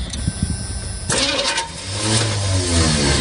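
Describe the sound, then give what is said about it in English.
A truck engine cranks with a rapid, rhythmic churning from the starter but never catches as a man tries to sell the truck, followed by a rough, uneven mechanical drone. Moderately loud, with no talking. “We saw Trumpster Bob try and sell that truck, right? Yes. It's not turning.”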